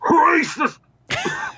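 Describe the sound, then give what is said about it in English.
A person imitates coughing and throat clearing with their voice, mimicking how they kept coughing during a whole movie: two harsh, voiced hacking bursts separated by a short pause, fairly loud. “I kept coughing like this during the whole movie.”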